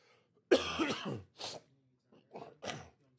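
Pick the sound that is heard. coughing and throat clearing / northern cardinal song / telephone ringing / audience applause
coughing and throat clearing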